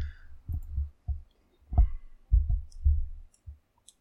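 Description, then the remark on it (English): Dice rolling on a table in a tabletop game, a quick run of dull knocks and light clatters that tumble irregularly for a few seconds before settling, with no talking. “Terrible roll. Flat fails.”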